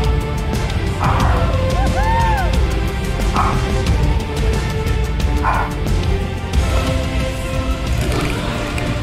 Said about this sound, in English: Because where there's danger, there's also dogs barking in the background.